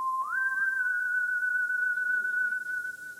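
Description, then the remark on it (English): A thin, high-pitched ringing-in-the-ears tone slides up briefly at the start, then holds steady and unbroken for about three seconds, with no voices over it. “I must be getting old. My ears are ringing.”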